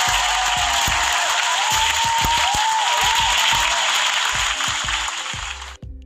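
A sustained burst of applause, dense crackling claps at a steady loud level for about six seconds, with faint low thumps underneath, then cutting off abruptly at the end.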